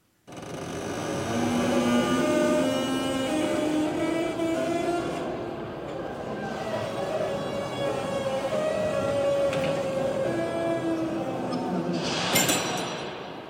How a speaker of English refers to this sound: I found this video online of an old door in like a great palace closing. Check it out.